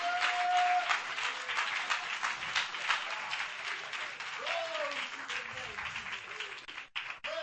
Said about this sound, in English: Come on, clap your hands if you trust the Lord.